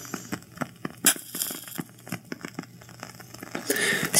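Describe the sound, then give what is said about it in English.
A lit match, just used to light a candle, is put out in water: a scattering of small crackles and clicks, then a brief, soft hissing sizzle at the end. No one speaks. “Yeah, I like when you put it out in the water.”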